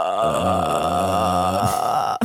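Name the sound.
voice imitating a burp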